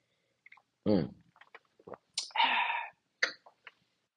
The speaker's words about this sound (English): Think I need a little sip of wine here to get my voice back down to its regular bass levels. Hold on.